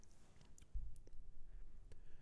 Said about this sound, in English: First sip.